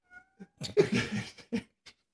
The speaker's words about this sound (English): I don't want to hear that cat. Can somebody turn that cat down? I'm trying to think over here.